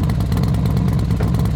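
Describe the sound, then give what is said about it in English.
A loud, steady motorcycle engine roar as the engine starts up on a street, rumbling low with a dense, rattling texture throughout, revving at idle-high without pause. “In a loud barrage, the engine ignited.”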